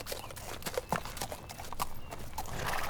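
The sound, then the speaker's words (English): Horse hooves clip-clop in a steady walking rhythm, moderately loud, with a few sharper knocks among the beats and no voices over them. “Here, we've got two more horses hitched here that you can borrow. Let's saddle up and get moving.”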